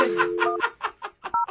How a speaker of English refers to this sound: Okay, well, let's pick up the tempo and just dial the phone number right now. All right. No more talking, just dialing.